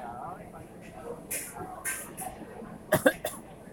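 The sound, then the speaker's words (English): Several short, harsh coughs break out, scattered at first and then bunched into a quick cluster of three near the end, over a faint background murmur. “people are keep coughing.”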